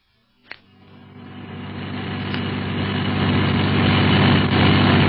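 After a brief click, a car engine roars to life and builds steadily into a loud, continuous rumble as the driven car accelerates hard and speeds through the streets of Casablanca.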